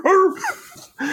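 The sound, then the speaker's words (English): A person imitates a dog barking, giving a few short, loud, voiced woofs in quick succession with a brief pause before the last one. “Now my dogs are going to start to bark because I'm. You didn't do that when we reviewed Scooby Doo.”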